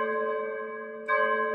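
church bell tolling

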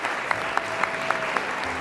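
people

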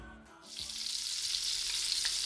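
bacon sizzling

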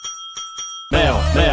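small bell ringing

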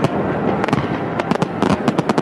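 fireworks exploding

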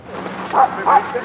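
dog barking

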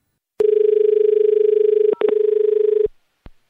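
telephone number being dialed

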